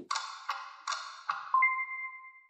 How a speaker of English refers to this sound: What are you fiddling with over there? No, I was making sure my phone wasn't like on loud or anything.